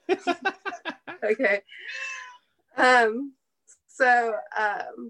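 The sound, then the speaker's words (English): A cat meows loudly, three drawn-out, pitch-bending cries separated by short pauses, after a quick burst of choppy vocal sounds at the start. “So there's my cat”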